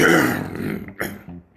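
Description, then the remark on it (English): A man clears his throat, a rough, gravelly rasp lasting under a second, followed by a couple of short, breathy catches. No words are spoken. “Get up to the door, clear his throat.”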